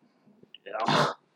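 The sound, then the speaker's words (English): A single loud sneeze bursts out after a brief quiet intake, sharp and explosive with a hissing spray that fades quickly. “Yeah. Bless you.”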